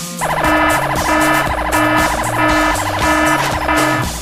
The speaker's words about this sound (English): When the ring detects an increase in heart rate due to inappropriate desire, it triggers an ear-piercing alarm and blinding strobe light.